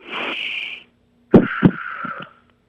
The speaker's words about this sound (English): Could you do a deep breath in and a deep breath out for me real quick? Like over the phone? Right. Yeah. Just a deep breath in and a deep breath out, and I'm going to monitor your breathing.